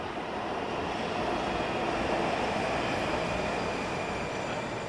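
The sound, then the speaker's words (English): A metro train rumbles steadily through a station during the evening rush, a continuous loud roar of wheels and motors with faint high hissing, holding an even level for the whole stretch with no voices. “A lot of people coming off the exit here, not as many people getting on the trains probably.”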